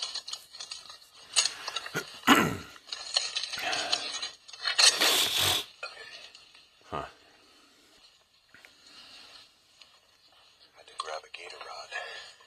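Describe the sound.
Creaking door hinges grind out in a few loud, raspy bursts, with a couple of strong swells early on, then softer scraping creaks trailing off amid faint background voices.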